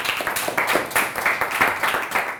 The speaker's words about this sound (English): Everyone clap for him.